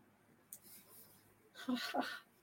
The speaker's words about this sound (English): All right, we're flipping my paper open